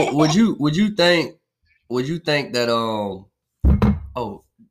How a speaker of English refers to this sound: I'm knocking stuff over here.